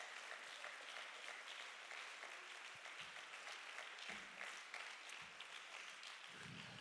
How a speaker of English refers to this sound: Oh, I wish somebody clap your hands a little bit right now.